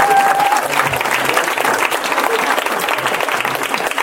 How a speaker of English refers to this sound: And just give him a round of applause.